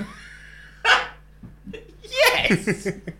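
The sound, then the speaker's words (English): A person imitates a loud sneeze, a sharp explosive burst followed by a second bigger blast that trails off in a few sputtering, voiced tails. “That's part of the sneeze.”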